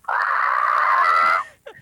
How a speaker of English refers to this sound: Leave a message at the tone.